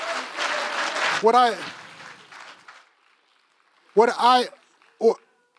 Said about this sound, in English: As the worship team comes up, worship team. They coming? Y'all did a good job too, by the way. Give them a round of applause to the leaders in the presence of God.